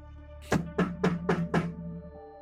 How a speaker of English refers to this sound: So you knock down in the basement. You can hear the knocking sound as well.